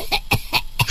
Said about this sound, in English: That's my four-year-old cough there.